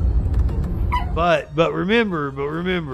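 After a moment of low rumbling noise, dogs whine and whimper in drawn-out, wavering cries that rise and fall in pitch, fairly loud, with a yip or two.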